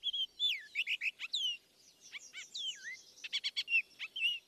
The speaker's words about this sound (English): Baltimore Oriole